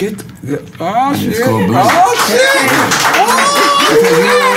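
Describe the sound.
An audience claps steadily for several seconds after mention of an upcoming book about a blended family, the applause mixed with overlapping excited voices and whoops from the crowd.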